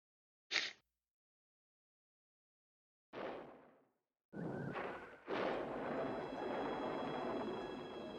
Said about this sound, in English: thunder. Really sets the mood.